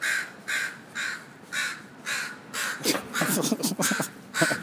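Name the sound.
crows cawing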